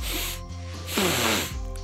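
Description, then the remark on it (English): Tired, heavy sniffing from the character Zordon, moving his head as he sniffs the air: a few breathy, hissing inhalations in quick succession, one longer and louder in the middle, over a steady low hum. “Zordon, exhausted and sniffing.”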